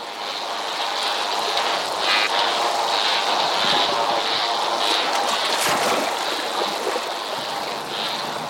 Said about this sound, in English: The sounds we're listening to were recorded underwater at Australia's Great Barrier Reef.